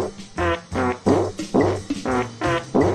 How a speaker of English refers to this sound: That was kind of a Mission Impossible fart. You know what that was? That was like the fart fugitive.